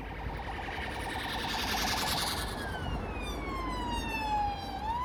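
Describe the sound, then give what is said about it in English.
An emergency vehicle siren wails past over a steady traffic rumble in London, its tone sliding lower as it moves by, fairly loud and with no one talking. “Oh, we'll wait for the siren.”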